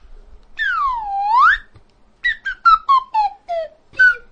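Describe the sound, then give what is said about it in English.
A slide whistle plays a short tune, opening with one long swooping glide down and back up, then a quick run of short notes stepping downward, loud with no voices. “how much of Denda's game show is just you playing songs on the slide whistle”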